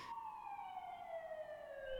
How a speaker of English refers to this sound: In woods like that, I'd never heard a siren or noise that loud before. It's amazing how far that travels. I heard that siren miles away.